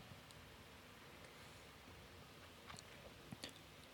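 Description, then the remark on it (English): Quiet mouth noises of someone sipping hot tea, a couple of brief soft slurps near the end over a steady hiss, with no talking. “I'm going to have a sip of tea.”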